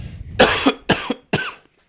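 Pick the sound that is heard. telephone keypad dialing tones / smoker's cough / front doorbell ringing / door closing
smoker's cough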